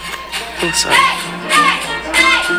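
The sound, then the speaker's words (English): A folky, witchy pagan festival in a back garden next door but one, on a hot day: many voices singing or chanting in wavering, rising-and-falling tones. The voices come in three swelling phrases, fairly loud, with no clear words. “there was a full-on like witchy pagan festival next door but one in the back garden.”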